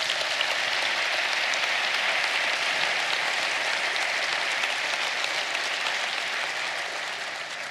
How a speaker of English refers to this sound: Give the Lord a hand clap offering.